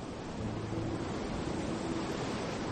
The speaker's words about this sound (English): The waves wash in near you rhythmically. One wave. And then another. You feel the power of the ocean.